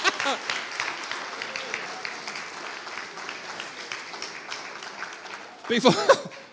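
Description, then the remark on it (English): An audience applauds steadily after a count of three, a dense wash of many hands clapping at even loudness, then a voice cuts in over it near the end. “After three, in a second, they're all going to start clapping.”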